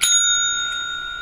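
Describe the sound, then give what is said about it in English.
A single bright bell strike rings out sharply and then hangs in a clear, sustained metallic tone that slowly fades, with no voices over it. “Where's that bell?”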